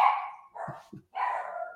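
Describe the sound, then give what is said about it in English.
Dogs bark several times in quick succession, the yelps drawn out and somewhat hoarse, with no one talking over them. “Stupid dogs.”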